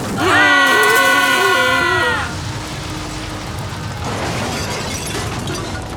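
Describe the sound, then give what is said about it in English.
A massive stone castle collapses, its left side falling, loud wavering scream-like cries riding over the first two seconds before giving way to a steady, noisy rumble of crumbling rubble as the crash throws up smog. “The smog from the massive crash engulfs the scare fighters as they emerge from the castle rubble.”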